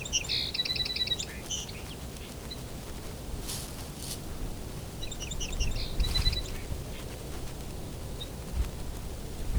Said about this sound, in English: Bit of back and forth between two song sparrows here. These two male song sparrows are probably on migration right now.